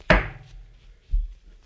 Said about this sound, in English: I burp like this all the time. I just hide it usually from you.